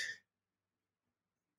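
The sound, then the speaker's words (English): A single short, sharp sneeze bursts out at the start, bright and hissy, then cuts off into near silence for the rest of the moment. “God bless you.”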